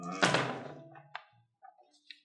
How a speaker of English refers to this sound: There's seven dice in here. Just do it. I'll just roll.